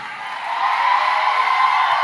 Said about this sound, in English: Come on, scream it.